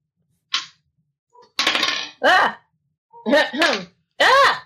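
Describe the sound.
A small die rolled for an athletics check in a tabletop game clatters briefly against a plate of food with a couple of sharp clicks, followed by a burst of rattling and several short voiced exclamations from a person.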